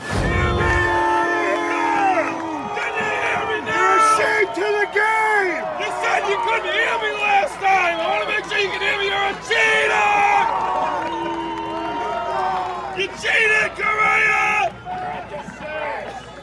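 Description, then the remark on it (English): A large baseball crowd at a spring training game boos a team loudly and steadily for about sixteen seconds, a dense wall of many overlapping voices with jeers rising and falling throughout. “They're lucky they don't play the Dodgers this year, because that would have been the all-time booing game in the history of sports.”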